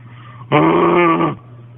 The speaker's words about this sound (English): Let me play the first clip now, the full clip with his growl in it. And again, the very loud growl you hear will be him.